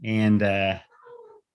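A cat lets out a loud, drawn-out meow with a brief break in the middle, followed by a softer, shorter meow trailing off right after.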